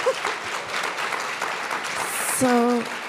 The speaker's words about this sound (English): Living legends. I mean, come on. Can we get a round of applause for you?